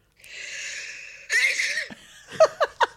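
A long, breathy wheezing inhale builds up into a forceful sneeze, followed by three quick, high, squeaky bursts, fairly loud with no talking, played back from a voice note.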